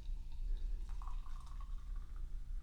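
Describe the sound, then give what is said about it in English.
A malt beverage is poured into a champagne flute, a thin gurgling stream starting about a second in and rising slightly in pitch as it fills, over a low steady hum. “just poured one glass. We're drinking them out of champagne flutes.”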